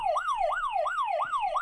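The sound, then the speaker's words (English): A game buzzer, used by players to buzz in, sounds a loud electronic siren-like wail, its tone sweeping rapidly up and down in about five quick, even cycles with no one speaking. “So guess what I've got? Buzzers.”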